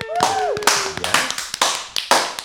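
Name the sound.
applause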